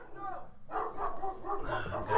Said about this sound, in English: That'll be the dog barking. There's another dog going past